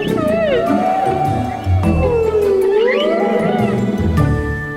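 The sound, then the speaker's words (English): Humpback whale song: long, eerie moaning tones that slowly rise and fall in pitch, with a few higher squeals layered over a low rumbling background, fairly loud. “humpback whales are the singing stars of the sea. Their songs can last up to 20 minutes.”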